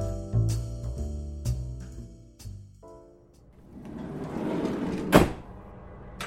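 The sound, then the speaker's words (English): The rear doors of a van shut with a few metallic clunks as people climb into the back, then one loud slam near the end, over a low steady droning hum. No one speaks. “It was wearing the same electrician's jumpsuit we were, and we stepped into the back of the van and shut the doors.”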